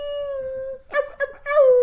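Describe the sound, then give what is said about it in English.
A person imitates a wolf howl with a steady, drawn-out vocal tone, then breaks into a few shorter, wavering yowls. The voice is fairly loud. “Meow and wolf, you know, and all in the same breath.”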